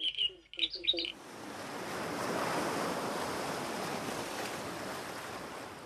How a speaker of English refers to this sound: A crowd is gathered on a windy headland surrounded by ocean surf at North Rosedale on the New South Wales south coast.